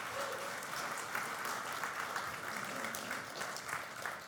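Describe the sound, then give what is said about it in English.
An audience applauds a praise band steadily, a dense, even wash of many hands clapping at once, sustained at a fairly strong level without pause and with no voices standing out. “Let's give this praise band a round of applause for doing such a great job.”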